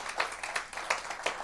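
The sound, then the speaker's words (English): A church audience claps for its online viewers in a steady rhythm, with four accented beats standing out over a continuous wash of scattered claps, fairly soft overall and with no voices. “Let's give our online family a hand clap.”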